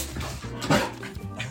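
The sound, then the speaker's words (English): Three dogs, Q, Nuck and Bruno, bark and whimper, with a sharp bark rising in the middle amid overlapping yips and whines, no voices present. Bruno is not yet a year old. “Those are my three dogs, Q, Nuck, and Bruno.”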